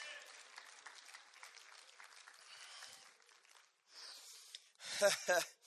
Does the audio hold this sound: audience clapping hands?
yes